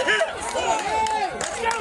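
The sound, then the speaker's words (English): A baseball crowd cheers loudly as Prairie takes the lead in the top of the seventh inning, a dense, continuous roar of many overlapping voices with high shouts and whoops rising and falling throughout. “The crowd goes nuts.”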